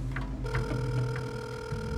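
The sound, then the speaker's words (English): A telephone number from a business card is dialed, with several short, evenly spaced keypad beeps over a steady electronic tone and a low hum. No one speaks. “snatched it out of my hand and began dialing the number in.”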